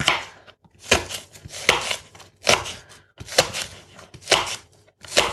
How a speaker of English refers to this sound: I'm just chopping away this last bit of onion here.